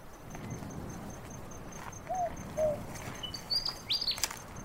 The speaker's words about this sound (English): That's a willy wagtail, not a night parrot. They're not a nocturnal bird, but sometimes they just seem to sing to the moon, which is pretty cool.